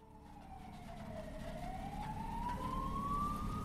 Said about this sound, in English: You just hear the sirens, people crying, and sounds of excavator.